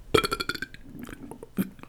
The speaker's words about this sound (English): Yo, yo. You gonna say excuse me there, bud? Why? Because that's extremely rude to just, like, burp like that at the table.